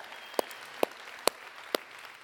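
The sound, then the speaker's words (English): Four sharp, evenly spaced hand claps for a church's lead pastor at a slow, steady rhythm, each a crisp burst over a quiet background hiss, with no talking. “you guys just need to know what an incredible lead pastor that you have, and I hope you appreciate him when he's here, and we can clap for him right now, too.”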